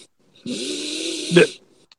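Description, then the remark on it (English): One heavy, rasping breath drawn in for about a second, ending in a sharp nasal snort, fairly loud, with no talking over it. “And the Neanderthal breathing in the background would be County Mayor elect”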